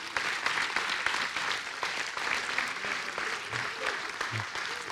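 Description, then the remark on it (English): Steady audience applause for three teams being sent off to do storm relief and construction for Hurricane Florence, a dense patter of many hands clapping at an even level for the full five seconds, with a few faint voices mixed in underneath. “Let's clap for these three teams and prepare to send them off.”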